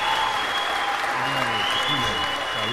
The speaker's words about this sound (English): So I pat myself on the back for that, because that's here. We'll give you the applause.